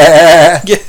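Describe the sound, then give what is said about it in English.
A single loud sheep bleat ending a scene in a TV show, a wavering, nasal cry that holds for about half a second before breaking off into a shorter, fainter tail. No one speaks. “It might have just been a sheep.”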